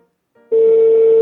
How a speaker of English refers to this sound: Oh, here we go. It's ringing.